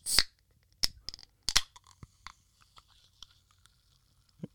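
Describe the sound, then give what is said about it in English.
A can of Food Lion brand sparkling water cracks open with a sharp metallic snap and brief fizzing hiss, then a few more clicks and soft, faint sipping sounds in otherwise quiet. “I didn't open my seltzer before we started rolling.”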